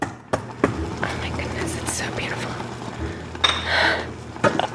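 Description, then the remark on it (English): Pots and utensils clink and clatter in a few sharp, scattered knocks, with a brief rattling burst near the end over a low background hum and faint murmured voices, as a cook prepares two dishes for a Thanksgiving table in a spacious, light-filled kitchen in Atlanta. “In a spacious, light-filled kitchen in Atlanta,”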